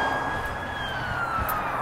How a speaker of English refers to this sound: Sound like they're going in a hurry. That's an ambulance, not police. Get that wrong all the time.